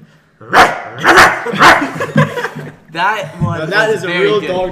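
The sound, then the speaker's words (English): A man imitates a dog with three loud barking woofs in quick succession, then people talk and chuckle right after. “Can we hear the dog noise just one more time, …?”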